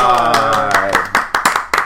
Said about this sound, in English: One round of applause. Bye. Bye.